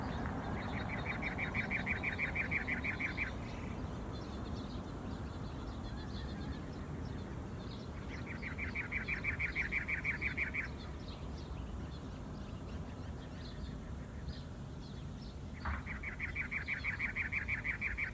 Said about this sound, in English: We're starting off with the Arizona state bird, the cactus wren. Find your picture. Take a good look while we play the sound of their call.